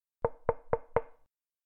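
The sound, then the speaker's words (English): Four quick, evenly spaced knocks on a wooden door, fairly solid, each with a short hollow ring. Then silence, with no voices. “A knock was heard at the door.”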